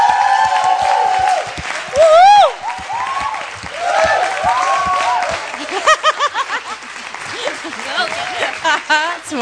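An audience applauds a pastor steadily for several seconds, a dense wash of clapping mixed with rising whoops and cheers from the crowd, loud throughout.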